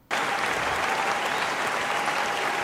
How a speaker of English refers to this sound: But now, I presume that they've got a wonderful show lined up for you tonight. They've got all those guests you heard of. Can we get a round of applause for those guests now?